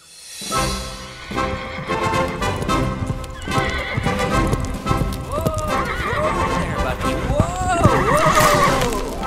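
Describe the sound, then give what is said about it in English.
A horse named Bucky whinnies repeatedly in loud bursts while its hooves clip-clop steadily underneath, with a person's voice mixed in among the sounds. “Such a good horse, Bucky.”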